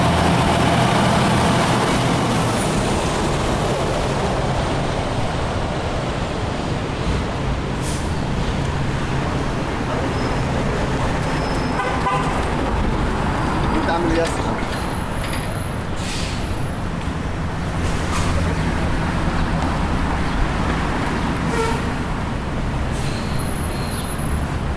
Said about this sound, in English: Quite a few cars right now on University Street.